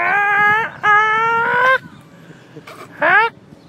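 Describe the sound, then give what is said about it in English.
A voice imitates a rooster with harsh, karate-like squawks: two long, loud, nasal cries back to back, then a pause and one short, sharp yelp. “No, roosters and chickens make like these weird like karate noises.”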